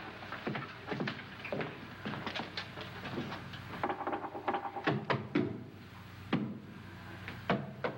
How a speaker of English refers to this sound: Three, six, nine, 12. 12 feet. I'm gonna knock on the other wall. When you hear me, you knock on this wall.